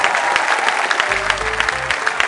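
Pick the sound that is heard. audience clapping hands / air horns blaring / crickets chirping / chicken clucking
audience clapping hands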